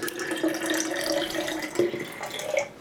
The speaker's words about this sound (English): Gotta pour myself a glass of water first.